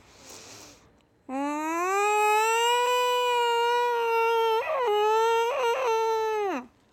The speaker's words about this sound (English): When I was trying to attempt sleeping at night, even though I was just so scared, this is what cats sound like when they are mating. Are you ready?